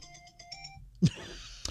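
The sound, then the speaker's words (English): A mobile phone rings in a radio studio during a live show with a quick run of bright, evenly spaced electronic tones, then stops abruptly, followed by a dull thump and brief rustling handling noise as it is turned off. “Thou shalt mute thy phone while on the show.”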